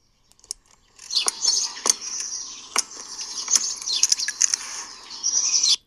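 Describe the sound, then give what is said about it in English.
Birds chirp steadily in the background in a dense, high-pitched chorus, mixed with sharp little clicks and ticks scattered throughout. The birdsong continues almost without pause. “Now, you will hear some birds. They are in the background.”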